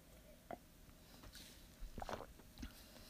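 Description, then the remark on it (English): Someone sips water, with a few soft slurps and wet swallowing sounds spread across a few seconds against a quiet background. “Whew, okay, gotta take a sip of water after that one.”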